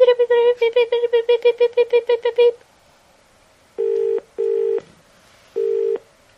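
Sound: telephone dialing and ringing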